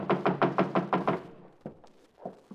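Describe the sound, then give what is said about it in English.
A rapid series of about seven sharp knocks on a back door by a grocery delivery boy, evenly spaced and fairly loud, followed by a few scattered softer taps and shuffling sounds. “will you get the back door?”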